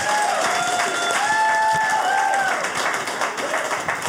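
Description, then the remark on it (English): An audience applauds the panel steadily, a dense wash of many hands clapping at an even loudness throughout, with a few sustained tonal whoops rising above the clapping. “Please, ladies and gentlemen, a round of applause for our panel.”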